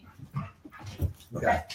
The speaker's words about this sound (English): Yeah, sorry about Marlo. Yeah, that's Marlo the dog.